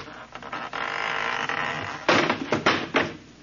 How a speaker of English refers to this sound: That door need a little tightening up, too. It fell right off.